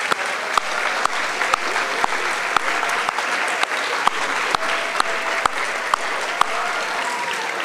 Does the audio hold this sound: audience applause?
yes